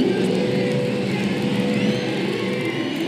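A race car engine roars continuously with the throttle blocked open, as Shane celebrates his 2022 Repco Supercars Championship victory over the Adelaide, South Australia sign at the final event. The loud, steady high-rev drone barely wavers in pitch for the full few seconds.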